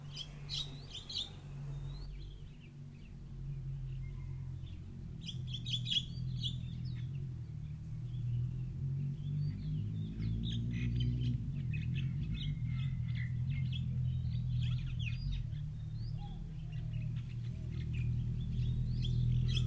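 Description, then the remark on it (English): Birds chirp and sing steadily over a low, continuous rumbling drone, with many small tweets scattered throughout and no voices present. “If you find yourself at any time in the meditation back among the birds, just imagine them flying away, quiet, leaving you quiet again.”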